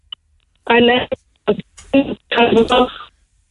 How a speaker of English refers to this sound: Sorry, your phone is breaking up there